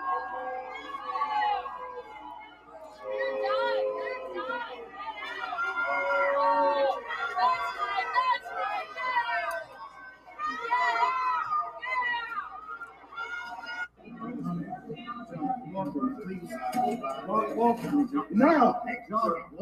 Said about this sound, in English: That crowd you just heard booing and yelling, that crowd is full of parents. Parents who have found out what is going on in the public school system.